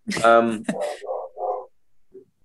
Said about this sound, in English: Oh, sorry, my dog's woofing in the back.